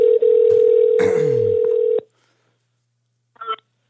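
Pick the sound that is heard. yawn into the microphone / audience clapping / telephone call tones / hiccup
telephone call tones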